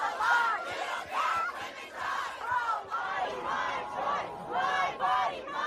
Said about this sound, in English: And we saw within certainly hours, maybe even sooner, of this leak being made public that there were crowds gathering outside the Supreme Court building, you know, holding up placards, launching their protests.